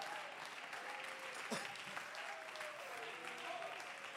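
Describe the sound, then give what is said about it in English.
An audience at a church service claps hands as the preacher urges them to, a dense, steady wash of applause, with faint voices calling out underneath and no single clear rhythm. “Come on, could you clap your hands?”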